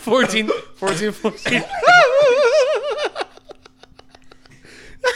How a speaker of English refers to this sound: Ran into a vicious loop of coughing and then hiccuping and then just did it again.